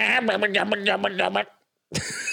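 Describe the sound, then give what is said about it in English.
A person vocally imitates a Tauntaun, the Star Wars creature: a loud, wavering, pulsing bleat lasting over a second, then a brief silence and the start of another rough, breathy burst. “can you do a Tauntaun impression?”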